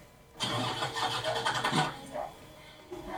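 A car engine cranks with a rapid, churning rhythm for about a second and a half, then sputters and dies without catching because it is flooded from pushing the gas, followed by a brief quiet and a small click.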